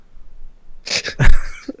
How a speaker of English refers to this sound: Gesundheit.